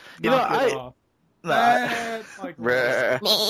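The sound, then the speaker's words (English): A person imitates a sheep, letting out three wavering, nasal bleats in a row with a short pause after the first, loud. “You like sheep.”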